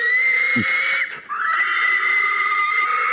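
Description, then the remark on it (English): A man lets out a loud, guttural pig-calling holler, a strained, wheezy sustained cry that breaks off briefly, then rises and carries on at full strength, alone. “He'd do better in a gore grind band than fucking pig calling.”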